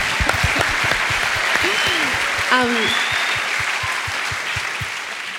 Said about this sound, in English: But were you enjoying that session today? You having fun? Okay, good. Let's clap. Clapping's good.